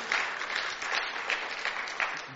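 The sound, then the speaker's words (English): An audience claps steadily in praise for a couple of seconds, a dense, even wash of many hands with no voices rising above it. “Come on, let's clap for Him.”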